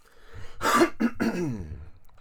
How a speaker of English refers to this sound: Let me clear my throat.